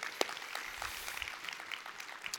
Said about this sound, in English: Hey, little kids, huh? Give a round of applause to little kids.